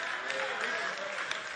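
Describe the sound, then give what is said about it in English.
An audience claps steadily throughout during a sermon, a dense, even wash of many hands with no break, while a few voices call out faintly beneath the applause. “I'm preaching better than you're clapping.”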